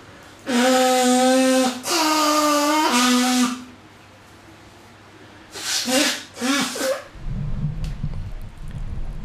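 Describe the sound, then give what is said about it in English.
Loud nose blowing: two long, honking, trumpet-like blasts, then two shorter snorting blows with falling pitch, followed by a low rustling rumble like handling a tissue. No one speaks. “Turn the microphone away so I can blow my nose.”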